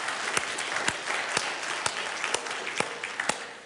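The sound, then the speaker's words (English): A crowd claps steadily at a New Life worship gathering, welcoming first-time visitors: a dense wash of many hands filling the space, with a few sharper, louder claps standing out at irregular moments throughout. “In fact, all of you, the New Life family, let's give these people a round of applause that are here.”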